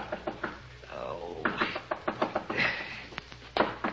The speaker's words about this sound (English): But just when you settle down to hibernate, the knocking starts.